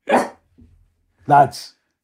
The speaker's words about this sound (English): Oh, sorry, Charlie just had some input there. He's clearly quite taken with Flatland. Now we have double team dog barking.